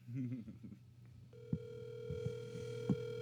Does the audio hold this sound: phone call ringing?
yes